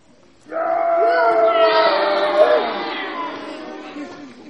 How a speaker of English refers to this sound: And Isumboshi thought that was brilliant. He gave a little cheer, didn't he?